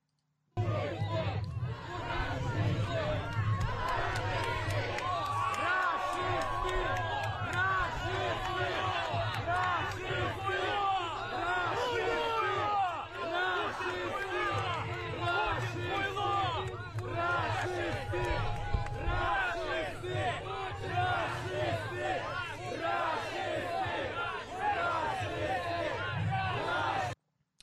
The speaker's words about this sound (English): when a group of demonstrators opposing Russia's invasion of Ukraine shouted fascist and murderer at him. One of the protesters chucked a red substance at the diplomat and that exploded all over his face.